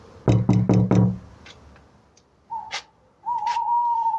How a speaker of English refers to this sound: And here's the door. So, I can't see a doorbell. Just have to knock and hope she's in.